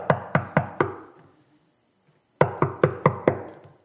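Someone raps on a door: four firm, evenly spaced knocks, a short silence, then five more knocks at the same steady pace. The knocks sound loud, with no voices.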